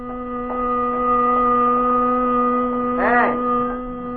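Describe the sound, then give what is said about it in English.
A car horn blares without pause after a man falls onto the horn in his steering wheel, a steady, buzzy tone that holds throughout, with a brief warbling swell rising over it near the end. “I guess I fell onto the horn into my steering wheel. I couldn't seem to sit up straight and get away from the noise.”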